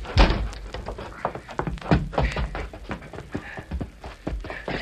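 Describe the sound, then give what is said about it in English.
The door of a shack doused with coal oil is pushed open amid a flurry of heavy thunks and bumps, with irregular knocks and clatter following in quick succession over about five seconds. “Now open the door.”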